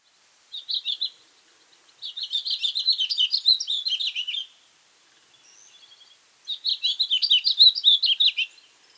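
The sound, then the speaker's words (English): A house finch sings a lively, warbling song in bright, jumbled phrases: a short burst, then two longer rambling runs separated by pauses, clear with no other sounds. “Next time you see this pretty little bird, listen for this song.”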